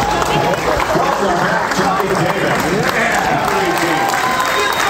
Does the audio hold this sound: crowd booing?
yes